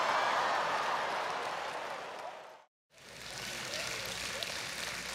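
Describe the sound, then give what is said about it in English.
An audience made up mostly of fathers of daughters claps in a dense, steady wash of applause that cuts out abruptly for a split second, then resumes just as full and continues to the end. “everyone clapping is pretty much a father of a daughter.”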